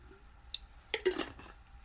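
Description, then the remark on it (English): A spaghetti jar of water clinks a few times: one sharp tap, then a quick cluster of bright, ringing knocks and a brief scrape before it settles into quiet. “If you ever watch me on Instagram, you know that I always have a spaghetti jar of water.”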